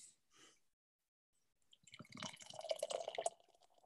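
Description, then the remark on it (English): A couple of short fizzy hisses, then a steady, gurgling pour of stout from a can into a glass, bubbling and rising in pitch as it fills, fairly loud. “I'm going to have to pour it just to see if it Let's changes.”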